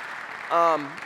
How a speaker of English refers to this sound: Would you guys just give him a welcome round of applause, please?